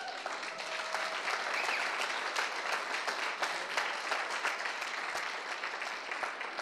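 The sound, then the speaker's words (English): A crowd applauds the band steadily and loudly, dense clapping for several seconds with a few scattered cheers mixed in, no one speaking over it. “If we can cheer each other on, maybe we'll run a little bit longer”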